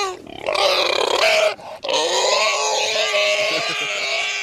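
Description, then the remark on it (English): A horse makes loud, strange squealing and groaning noises as it is fed oats, a strained wail that breaks off briefly and then carries on steadily. “I don't think he's supposed to sound like that when he eats his oats.”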